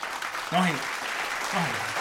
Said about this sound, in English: Clap that out. No, she gets 2 claps.